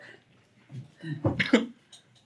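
A short burst of throaty coughing from a chronic cough brought on by winter allergies, two or three quick rough hacks, preceded by some low murmured vocal noise and followed by quiet.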